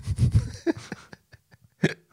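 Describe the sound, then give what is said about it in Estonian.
A low, sputtering fart sound effect, like a moped starting, rumbles in a quick burst, followed by a few short, sharp pops and puffs spaced out over the next second or so, fairly loud. “Shitting yourself sound effect.”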